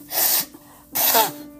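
Two sharp, breathy sneezes from a person with a couple of sniffles this week, the second one slightly more voiced, separated by a brief pause, with no talking.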